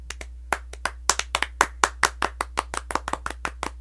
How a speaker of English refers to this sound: It's a slow clap. They get a slow clap.